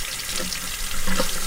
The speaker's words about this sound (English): Since the guacamole has a lot of oil in it, we start with cold water and dish soap. So let's do some cold water rinse. She runs the shirt under the cold water.